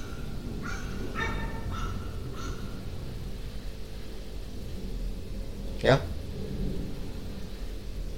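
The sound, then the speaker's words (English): A dog gives a few short, high-pitched yelps in quick succession, followed later by one sharper, louder burst, all over a steady low rumble of background noise. “This fucking dog, bro.”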